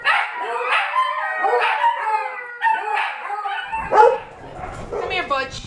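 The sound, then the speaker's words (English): Butch, a pit bull-type dog, howls and barks in long, wavering, high-pitched cries broken by short yelping barks, loud and nearly continuous, with a rougher, noisier stretch near the end. “Butch has been here since August. Oh. Butch had cancer. He's a kind of pit bull.”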